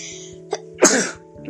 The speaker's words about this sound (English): Wait, hang on, I'm about to sneeze.